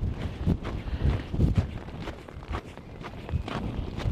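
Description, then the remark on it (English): Strong cold wind buffets the microphone in a constant low roar with rough, gusty surges, while faint thumps like footsteps come through beneath it. No one speaks. “And now that it's cold and windy, they've got their flippers stuck down by their side.”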